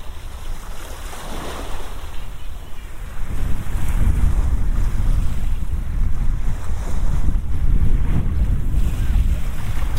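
Shallow sea water at a beach sloshes and washes continuously around the feet of someone standing in it, with a steady rushing surge that swells louder partway through, plus some wind buffeting the microphone; no voices.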